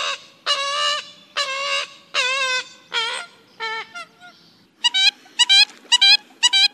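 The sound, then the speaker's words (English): A loud series of calls from an American coot, a black, duck-like bird with a white bill: about a dozen short, nasal honks, first in an uneven string, then a quicker, higher-pitched burst after a brief pause, with no talking. “Do you see any black duck-like birds with white bills that thrust their heads forward as they swim like strutting chickens? That's no duck at all.”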